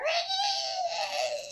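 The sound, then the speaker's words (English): A person imitates the noise of a scary female creature: one loud, sustained, piercing shrill cry, not a growl, held steady for over a second with a slight dip in pitch, rich in bright overtones. “Like, the noise that she makes. It's not like a growl, it's like a shrill, like...”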